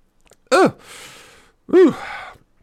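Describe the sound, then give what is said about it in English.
Two sharp, strained choking gasps, each rising and falling in pitch and trailing off into a raspy, breathy exhale, after air went down the wrong pipe. No one speaks. “The air comes down the wrong pipe?”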